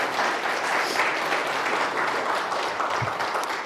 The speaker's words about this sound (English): That was really just a ploy so that I could lead in with applause.